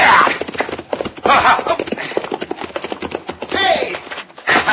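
The hooves of a horse named Diablo gallop in a rapid, steady drumming beat, loud, as its rider catches up to another rider to rope him, with a few brief indistinct vocal bursts rising over the pounding rhythm.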